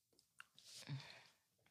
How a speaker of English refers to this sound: Bless you.